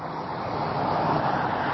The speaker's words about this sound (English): We'll let the car go by. Sorry. One second.